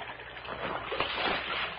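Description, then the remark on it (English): Continuous sloshing and splashing of water as a dead man's body is dropped back into a creek, swelling briefly in the middle before settling into a steady churn. No voices. “Drop him back in the water.”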